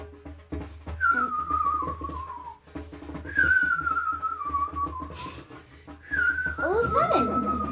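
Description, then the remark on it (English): Three drawn-out, falling whistles imitate twittering birdsong, each call sliding downward. Faint voices and background murmur sit underneath. “Lovely twittering birds.”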